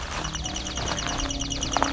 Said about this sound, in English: What a good chipping sparrow.